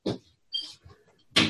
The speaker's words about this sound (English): Like if I'm, I'll shut my door here.